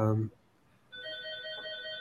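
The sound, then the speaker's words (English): A telephone rings with a steady electronic tone that starts partway through and continues to the end, following a brief moment of a voice, at moderate volume. “So you can hear the phone ringing. We'll let it ring on.”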